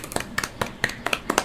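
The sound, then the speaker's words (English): A short burst of clapping from what sounds like one or two people, a round of applause for Hawkeye not getting last place in a ranking, a quick, uneven patter of sharp claps lasting about a second and a half at a moderate level, with no talking. “Let's get a round of applause for Hawkeye for not getting last place on this.”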